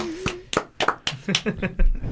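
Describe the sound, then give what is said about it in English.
A handful of sharp, irregular hand claps for a councilman, about eight over two seconds, with voices murmuring and a brief whistle-like tone underneath, more a few people clapping than a full crowd. “It was like a standing ovation, guys.”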